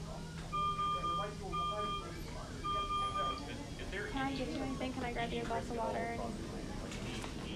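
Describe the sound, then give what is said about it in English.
A hospital monitor machine beeps three times in a steady, evenly spaced pattern, clear, before voices begin talking softly over a low background hum. “That machine is going to beep a billion times.”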